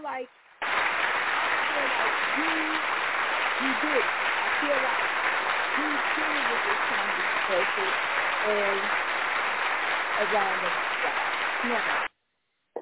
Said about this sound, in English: So, Chris, round of applause.